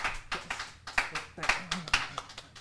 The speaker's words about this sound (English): I want to shout out to the Wildland Firefighters. One time round of applause, please, for the Wildland Firefighters.